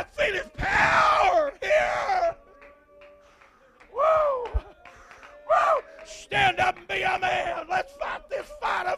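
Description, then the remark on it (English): A woman shouts in loud, strained bursts, her voice rising and cracking across several outbursts separated by brief quieter pauses, with faint background murmur between them. “Do you want to tell her to stop shouting?”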